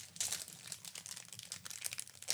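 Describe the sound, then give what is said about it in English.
Continuous crinkling of a plastic snack wrapper as it is cut open with scissors, a steady rustle of crackles and crunches for a couple of seconds with no voices. “Scissors. They improve everything.”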